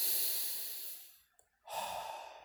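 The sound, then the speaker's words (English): Deep breathing: a long airy exhale out through the mouth that fades out, a short pause, then a fresh breath drawn in strongly through the nose, with no talking. “So anyway, let's get into our deep breathing.”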